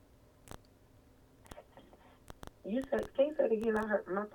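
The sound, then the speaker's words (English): A voice on a phone line cuts in and out, with sharp clicks and crackles breaking up faint, choppy speech before the talking comes through more clearly but still garbled. “Can you say it again? My phone broke up.”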